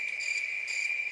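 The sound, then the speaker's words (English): Crickets chirp steadily in a continuous high-pitched trill, fairly quiet and unbroken, with no voices or other sounds alongside. “We're gonna need crickets for this part, okay?”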